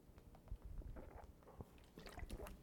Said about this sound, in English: And hang on, I'm taking a sip of water.